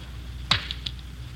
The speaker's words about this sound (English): Let me take the back off the watch for you.